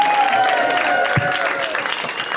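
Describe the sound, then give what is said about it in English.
An audience at a stand-up comedy show claps loudly for a comic who has just finished his set, a dense, steady wash of applause lasting the whole moment, with a thin whistle and scattered cheers riding on top. “you guys let him hear it.”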